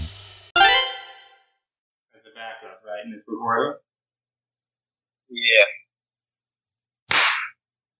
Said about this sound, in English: You got that big spike on your end? What spike? I just clapped and made the microphone spike. It didn't. It didn't? Did not.